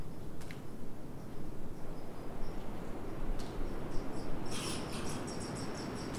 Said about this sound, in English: A squirrel.